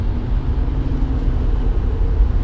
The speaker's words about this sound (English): Oh, here's that fucking truck again.